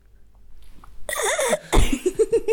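Loud coughing bursts into the microphone after a brief quiet start, followed by a few short voiced gasps or laugh-like sounds.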